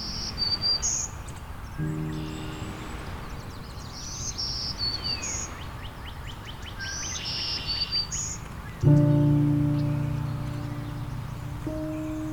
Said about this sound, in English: This is one of the songs of the black-throated green warbler, which can be remembered using the mnemonic, "Trees, trees, lovely trees."